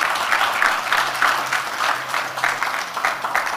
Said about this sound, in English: Give God a good clap offering.